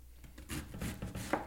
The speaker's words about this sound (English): We're chopping up some cabbage, chopping it rather fine chopping, quickens the cooking process.